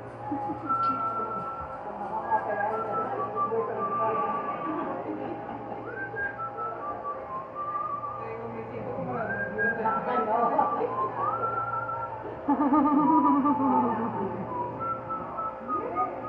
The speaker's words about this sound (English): What are you whistling? Go ahead.